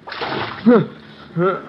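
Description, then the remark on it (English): Water from a pitcher is splashed onto a man's face in one broad wash to revive him, followed by two short voiced sputters or groans as he reacts. “Well, looks like the water was what you needed, Buster.”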